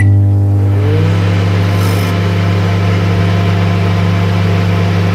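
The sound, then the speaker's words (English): A microwave oven runs with a steady, loud electrical drone, its low hum rising slightly in pitch at the start and then holding constant throughout, with no voices. “And of course, it was a microwave.”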